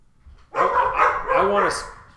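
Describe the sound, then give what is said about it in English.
Dogs bark in a loud burst lasting about a second and a half, a couple of overlapping barks running together after a brief quiet start. “There's the dogs making an appearance.”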